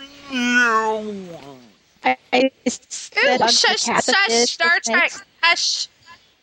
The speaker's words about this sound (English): is breaking up in this. I know. I didn't hear what she said.